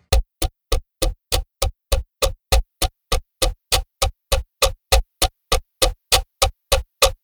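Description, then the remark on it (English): A clock ticks loudly at an unusually fast, steady pace, about three sharp clicks per second with a slightly thumping, hollow quality. No one speaks. “And I think I gotta get that clock fixed. It sounds a little whack.”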